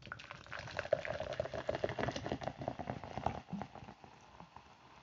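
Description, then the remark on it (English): Passion fruit kombucha poured into a glass, a steady bubbling, fizzy splash with crackling pops, tapering off toward the end with no voices. “This bad boy up, pour in.”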